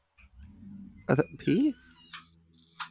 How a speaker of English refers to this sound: Which cat is that